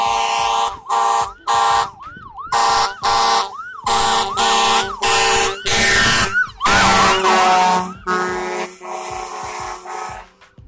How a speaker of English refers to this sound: Here comes the fire truck. So I've got to deal with another siren in a minute.